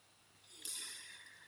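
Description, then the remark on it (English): A person with a frog in the throat gives a single short, breathy cough that fades away over about a second, with no talking around it. “Excuse me, I have got a bit of a frog in the throat and it doesn't seem to want to be playing ball today while I'm recording this podcast, so apologies for coughing.”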